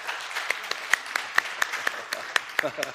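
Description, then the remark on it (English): Scattered audience applause for a speaker celebrating 35 years of marriage, sharp claps popping out irregularly over a soft murmur of voices, moderately loud, fading toward a few lingering claps at the end. “Some of you have been married twice that, and I know that, so I feel kind of awkward when people applaud 35.”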